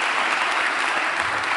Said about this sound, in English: I think you're clapping for the kneeling bench. I don't think you're clapping for me